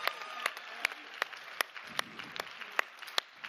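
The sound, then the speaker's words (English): Audience applause for contestants after a competition: a steady beat of sharp, distinct claps stands out over a softer wash of scattered clapping, holding at a moderate level for a few seconds with no talking. “Can we give our contestants a round of applause?”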